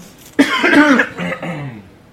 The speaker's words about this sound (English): I was waiting for your second cough.